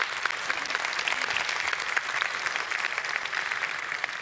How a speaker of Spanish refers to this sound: Cuando yo escuché eso, wow, y sí, vale la pena un aplauso en eso.